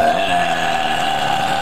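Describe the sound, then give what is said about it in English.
A long, loud burp from a woman drinking Truly rumbles steadily, sustained without a break for nearly two seconds, with no talking around it. “and she's going to be providing the majority of burps, but her girlfriend is going to pipe up here.”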